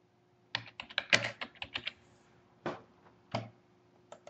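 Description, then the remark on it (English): Typing a short email to author Peter Watts on a computer keyboard: a quick flurry of clacking keystrokes, then a few slower, isolated taps with pauses between them, over a faint steady hum and no voices. “Just typing a little email to Peter Watt.”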